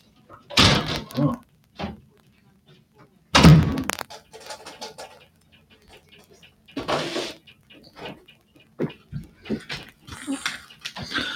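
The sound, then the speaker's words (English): Loud fist pounding on a front door by a neighbor comes in a few heavy, separated bursts, with a dog barking and faint voices murmuring in between. “So my neighbor, because nobody pounds on my door, and usually it's her,”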